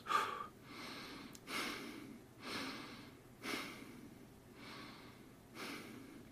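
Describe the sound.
A person breathes in quick, shallow puffs, about six airy breaths in a steady rhythm, fairly quiet, with no talking, demonstrating breathing as if one has anxiety.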